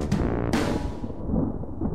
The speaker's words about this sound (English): But as they wondered how they'd ever accept their unfair fate, a storm rumbled outside.